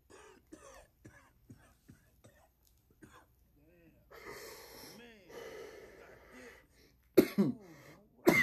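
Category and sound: human body sound, coughing fit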